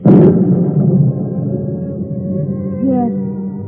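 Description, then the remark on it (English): A sharp crack opens into a deep, sustained rumble of thunder from an approaching storm, rolling on steadily for several seconds, loud, with no voices over it. “There is a storm coming.”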